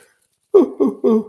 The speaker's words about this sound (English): And I will yawn for a second.